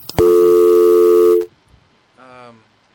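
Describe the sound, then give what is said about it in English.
A loud, steady electronic telephone tone holds for over a second, then after a short silence a fainter, shorter tone sounds, like a line ringing while a call is placed. “I'll just call him up.”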